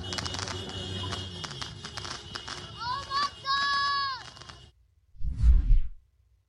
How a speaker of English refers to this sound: Here is a video from Sydney, Australia. Firing fireworks on the streets.